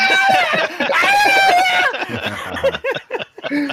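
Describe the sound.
A loud, shrill scream rings out for about two seconds, wavering in pitch, then breaks off into people talking and chuckling nearby.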